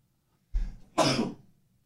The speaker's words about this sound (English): I'm sorry, that was... Made me sneeze.